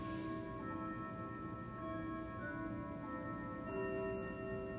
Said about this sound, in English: Oh, there goes the grandfather clock.